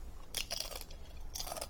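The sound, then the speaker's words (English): Crisp crunching of a crunchy snack being bitten and chewed, two bursts of bright crackly noise separated by a brief pause, with no talking. “So, and get ready, stream for the crunch.”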